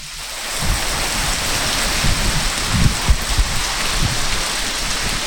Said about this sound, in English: Yay, rain! Our first big monsoon rain of the year here on the North Rim.